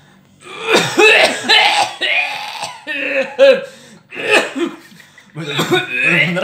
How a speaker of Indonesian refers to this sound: Ada yang lagi penyakitan batuk nggak? Kalau ngebatuk dong, biasanya gatal total tuh batuk.